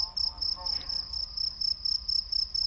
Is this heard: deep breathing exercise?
no